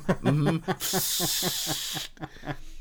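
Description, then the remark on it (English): A radiator, normally covered to keep its noise down but now uncovered, lets out a loud, steady high-pitched hiss lasting a little over a second, while a person keeps talking underneath it before and after. “No, it's a stupid radiator. I usually have something over it to keep that noise down, but I took it off the other day and forgot to put it back on.”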